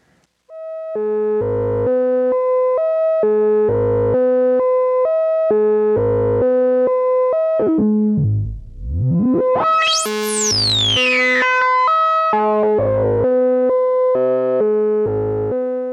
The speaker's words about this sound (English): So that self-resonant filter is really grabbing onto those harmonics and making them growl. And ultimately, that's going to show up in the modulation of our other filter.